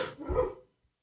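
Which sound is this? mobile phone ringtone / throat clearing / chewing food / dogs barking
dogs barking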